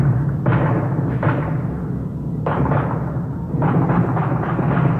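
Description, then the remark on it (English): Loud booming explosions go off one after another at irregular intervals, each blast rolling into a rumbling decay, like heavy artillery in a war zone. No one speaks. “Question mark explosions. We don't really know what, you'll hear it. It sounds like a war zone.”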